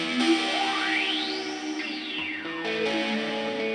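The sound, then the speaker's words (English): A sustained, effects-heavy guitar tone played through an Old Blood Noise Endeavors Procession pedal, with a sweeping filter that rises and falls in a slow arc, washed in reverb and shimmering modulation, steady and fairly loud with no talking. “It does tremolo, it does flange, and it does modulation-y stuff. And it also does reverb.”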